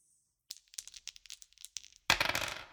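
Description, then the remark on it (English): A pair of twenty-sided dice rattle and click in a hand, then clatter loudly onto a hard surface and tumble briefly before settling, heard up close with no talking. “You do have advantage, so roll 2d20s and take your higher.”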